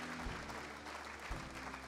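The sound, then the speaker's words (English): An audience claps in praise of the Lord during a church service, a dense, steady wash of many overlapping hand claps at an even loudness, with no clear voices standing out. “If you want to clap your hands, if you just want to give Him praise from your mouth.”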